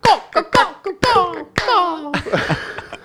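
Several sharp hand claps, likened to the clapping of a character from Arrested Development, land at an uneven pace, about five in three seconds, mixed with loud, wavering vocal sounds in between, as though someone is clowning while clapping.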